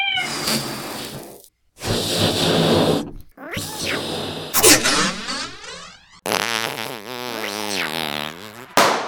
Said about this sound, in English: Anyway, here's Ken making his deluxe featured cat balloon.